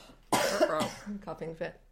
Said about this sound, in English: Oh, coughing fit.